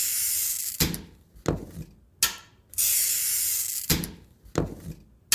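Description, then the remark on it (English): Stained glass for windows being scored and cut by a St. Louis artist following a pattern: several gritty, hissing scrapes of a cutter, each ending in a sharp crack or snap as the glass separates, repeating steadily with no talking. “You just follow your pattern and cut out the glass.”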